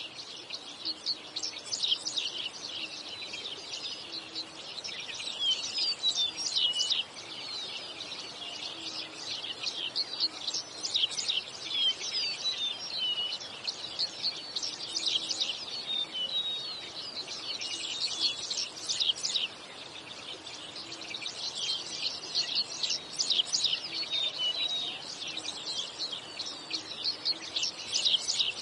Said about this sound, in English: But today, rather than tell you all the great things about Bird Note, we're going to let our feathered friends do the talking. Enjoy this minute of uninterrupted bird song.